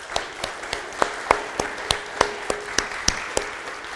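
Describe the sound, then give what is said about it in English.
A small round of applause for veterans: sparse, crisp hand claps land at a steady pace, roughly a dozen sharp slaps over a few seconds, with no voices over them. “Let's give a round of applause to our veterans.”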